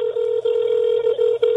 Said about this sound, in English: We're calling her whether she likes it or not.